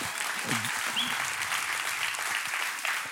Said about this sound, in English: Come on, you can clap more than that.